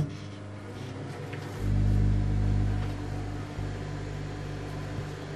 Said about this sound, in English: Put your sound recorder in the microwave. I'll put a camera in there with it as well. Yeah. Yeah, okay, brilliant. I look forward to this. That'll definitely do. So... two peeps going in the microwave. Full power, 60 seconds.